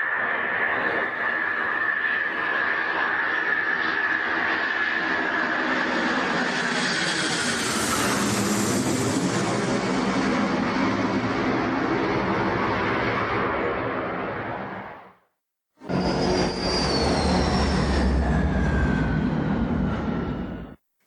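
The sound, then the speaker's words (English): A C-130 turboprop military cargo plane flying to Okinawa roars loudly and steadily, its droning engines swelling as it passes overhead, then after a brief cut the engine noise resumes with a rising whine. “C-130 to Okinawa.”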